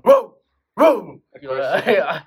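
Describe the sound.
A person imitates an aggressive dog, giving two sharp, loud barks followed by a longer, rough growling bark, with no other sounds.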